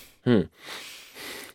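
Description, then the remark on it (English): A short voiced gasp, then two long, heavy, noisy breaths, out and in, fairly loud, with no talking, like someone deliberately breathing hard. “You ever hear someone just heavily breathing and then you realize it's you?”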